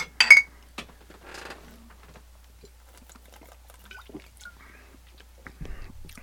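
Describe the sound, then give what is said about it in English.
Glasses of cider clink together once in a bright, ringing toast, fairly loud, followed by quiet handling sounds, faint sips and soft rustling. “Let's give this a little try, right, boys. Cheers. Cheers.”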